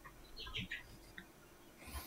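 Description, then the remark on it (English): Chickens squawk in the background, a few faint, scattered calls that are loudest near the start, with a brief higher cry at the end. Nobody speaks. “Chickens going off in the background there. That is exactly what happened. They just started like squawking.”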